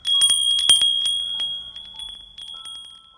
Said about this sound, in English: Suddenly, the chimes hanging on the curtain rod over the sliding door jingled.